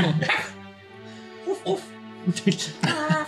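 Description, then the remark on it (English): A puppy whimpers and lets out several short, high yips and barks in quick bursts, with a voice speaking in the background. “stick your puppy in the caravan and be on alert.”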